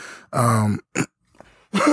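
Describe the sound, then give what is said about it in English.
A hoarse person clears their throat in three rough, voiced bursts: a longer hacking rumble, a quick short one, then another after a brief pause, with no talking. “And that's why I kind of sound kind of hoarse and clearing my throat and everything.”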